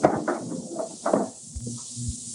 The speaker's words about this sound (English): Quick, get that door open.